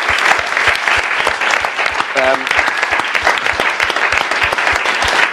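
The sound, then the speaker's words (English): Loud, sustained audience applause for the staff from Avalon and the St James's Theatre, with dense, rapid clapping that stays steady throughout, and a brief voice briefly audible under the noise midway. “First, ladies and gentlemen, please give a massive round of applause to all the staff from Avalon and the St James's Theatre.”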